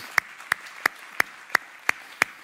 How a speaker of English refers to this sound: Again, God is good all the time. Could we give him another hand clap of praise?